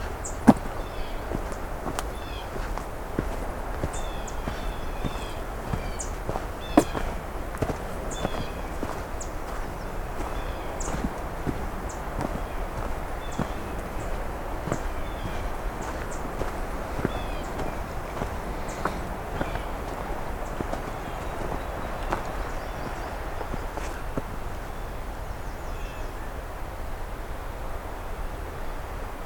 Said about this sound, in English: Some red starts ticking amongst each other here.